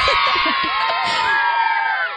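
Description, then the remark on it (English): A loud burst of many children screaming and shrieking at once, high-pitched overlapping voices in a continuous chaotic din that holds steady for a couple of seconds. “Insert screaming children sound effects here because that's pretty much all the commentary that I got during the film.”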